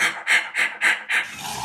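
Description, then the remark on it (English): Someone imitates a white rhino's contact call, the sound rhinos make when calling each other: five quick, breathy huffs in a steady panting rhythm, fairly loud, fading into a soft exhale at the end. “They will produce these squeals, and there's a sound they make when they're calling each other, like...”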